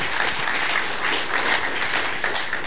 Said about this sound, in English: So if you're encouraged, would you just give the hand or give the Lord a clap or something?